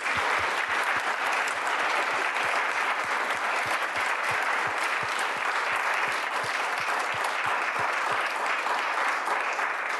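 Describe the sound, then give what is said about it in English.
An audience at a book salon applauds a panel of scholars and historians, a dense, even wash of many hands clapping that holds at a constant loud level for the whole stretch, with rhythmic low thumps running through it and no voices. “But what I would like to do is first thank this incredible, beautiful panel of scholars and historians, and I'd like us to give them an extraordinary round of applause.”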